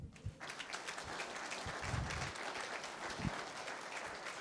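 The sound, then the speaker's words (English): A group of people clapping steadily for several seconds to thank the speaker's mother, a dense, continuous patter of applause with no speech over it. “All right, if you want to now, you can clap and say thanks to my mom.”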